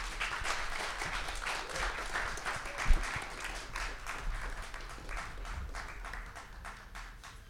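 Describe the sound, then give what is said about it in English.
Sustained applause from an audience welcoming three speakers to the stage: a dense, steady patter of many hands clapping at once that holds its level throughout and then gradually thins and fades toward the end. “So please join me in welcoming these three fantastic humans to the stage. Big round of applause.”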